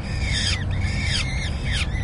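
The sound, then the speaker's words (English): A peregrine falcon of the pair Callie and Gary screams three times in quick succession during a confrontation between the two, each call a harsh, high, grating cry that falls away at the end, over a steady low rumble of background noise. “They're rarely both at the nest at the same time, and confrontations between the two often end with a string of disgruntled screams.”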